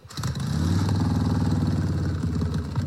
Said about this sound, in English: I hear a rumble of a motorcycle that sounds a lot like mine in the background. Is it almost time?